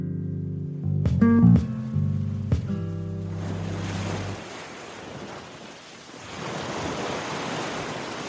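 Ocean waves wash onto a beach in a steady, broad hiss that swells again near the end, following a few seconds of low humming tones and several sharp knocks.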